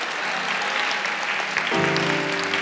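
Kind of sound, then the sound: crowd, audience clapping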